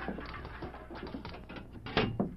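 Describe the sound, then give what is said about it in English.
A jail cell door is unlocked and opened by the turnkey: a run of metallic rattles and clicks from the lock, then two sharper, louder clanks near the end as the door swings. “Yeah, I'm opening the door.”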